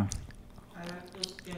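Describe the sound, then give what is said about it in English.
Wet, squishy chewing on a mouthful of cartilage and bone that is chewed and spat out, with soft crackles and sticky mouth clicks over a couple of seconds, a low voice murmuring underneath. “I think he put a bone in his mouth. To do the chew and spit.”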